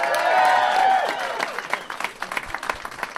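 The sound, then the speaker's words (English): A burst of audience applause at a live show, welcoming the host's father, with a whistle or cheer at the start, then dwindling into scattered, individual claps that fade over a few seconds. “And please give a big round of applause to my dad”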